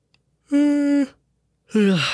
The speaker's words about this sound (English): Sorry, I yawned.